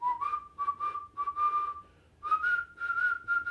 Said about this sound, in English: He's walking down the street because he's actually to scare the guys to running around the corner where his other two mates are waiting. Nice. And he's walking along, and he's whistling on this step.